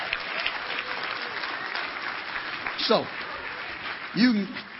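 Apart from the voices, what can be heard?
audience hand clapping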